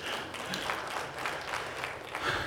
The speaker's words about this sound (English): Yeah, you can applaud. That's good.